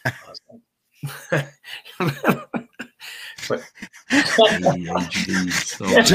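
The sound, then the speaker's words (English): A run of harsh, hacking coughs in uneven bursts, building into a longer stretch of raspy, wheezing coughing and throat-clearing that fills the last couple of seconds. “Me hacking and coughing and wheezing.”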